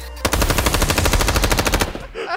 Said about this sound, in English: The second Joe entered the throne room, he opened his mouth to speak, but was cut off by a gunshot.